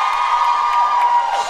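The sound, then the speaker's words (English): A live crowd in New Zealand cheers and whoops loudly and continuously, with applause mixed into the roar. The noise stays full and sustained for the whole moment, and no one speaks over it. “I love to imagine the one person in the crowd who didn't know what you were all clapping about and just going with it.”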